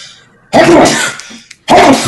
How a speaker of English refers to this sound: Whoa. He committed to the sneeze. Yeah. Oh, yeah. He doesn't fuck around.